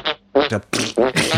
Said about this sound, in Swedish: Någon som står bakom kameran och pruttar sönder det han säger. Och det är väldigt fånigt.